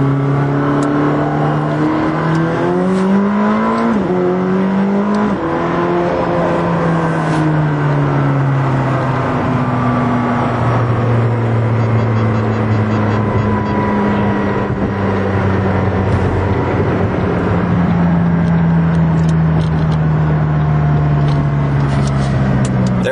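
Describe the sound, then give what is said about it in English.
A loud McLaren 620R sports car engine revs hard and pulls through the gears, its pitch climbing then dropping sharply on downshifts down to second gear before settling into a sustained, throaty drone. “This car is really quick, quite quick. Down to second gear.”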